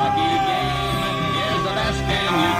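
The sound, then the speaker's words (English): A loud, dense outdoor din of a crowd yelling and cheering at the Trucker Freedom Convoy, with long sustained truck horn blasts layered over each other throughout, steady with no pauses. “But you can just hear there's honking, there's people cheering.”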